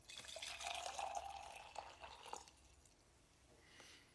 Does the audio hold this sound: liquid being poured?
yes